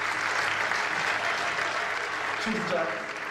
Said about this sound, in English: The room erupts in ferocious applause.